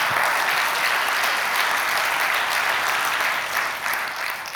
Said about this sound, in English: Yeah, we just like clapping, so I guess we're gonna keep doing it.